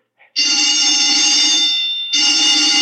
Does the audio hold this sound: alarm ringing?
yes